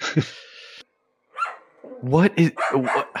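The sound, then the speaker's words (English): A dog barks loudly, a quick run of several sharp barks following a short burst of noise and a brief pause. “The dog is so mad that you didn't know about Malik Yoba.”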